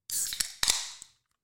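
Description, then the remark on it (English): A bottle of Brooklyn Lager from Brooklyn Brewery in Brooklyn, New York, opens with a sharp, airy hiss of escaping gas lasting about a second, punctuated by a few crisp clicks and snaps of the cap or tab, then silence. “Before we reveal our predictions, we'd like to raise a glass to our opponent and sample a beer local to their university.”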